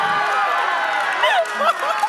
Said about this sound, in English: Thank you. That was very nice of you to clap for me.